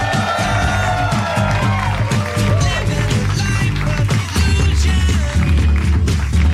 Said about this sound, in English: Would you please keep those applause going and welcome to the stage the mayor of Hermantown, Dan Harmon.